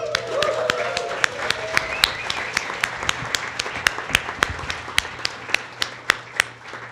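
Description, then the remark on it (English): Steady, rhythmic audience clapping, sharp claps repeating about three times a second, over a low crowd murmur, with a few voices briefly audible near the start. “Keep clapping.”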